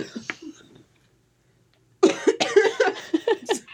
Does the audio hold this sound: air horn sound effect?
no